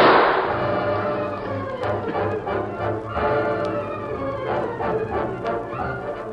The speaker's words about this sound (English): What was that shot? I heard a gun.